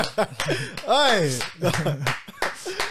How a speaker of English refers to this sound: I'm gonna clap again.